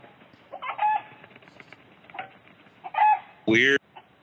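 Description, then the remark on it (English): A chicken squawks and clucks in agitated bursts while being attacked by a hawk, ending in a loud, harsh shriek, with short pauses between the cries. “You got a chicken here, getting attacked.”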